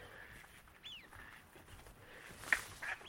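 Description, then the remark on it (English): Faint wading-bird calls over a soft outdoor hiss at a marshland with big water-filled lagoons: a thin downward-sliding whistle, then a couple of short, sharp chirps a moment later, with no one speaking. “You can hear a bit of wader action.”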